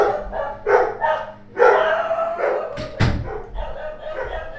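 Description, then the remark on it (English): Dogs bark repeatedly in an irregular burst of loud yaps and woofs, one sharp bark standing out near the middle, with a low hum underneath. “My dogs are... they're very into the military-industrial complex.”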